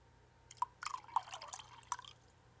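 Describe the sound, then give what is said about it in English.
Whiskey glugs from a bottle into a glass in a quick string of bubbly, dripping plops and small splashes, fairly quiet, with no talking. “I also poured a lot more than.”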